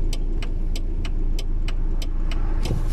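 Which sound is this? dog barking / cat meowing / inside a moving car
inside a moving car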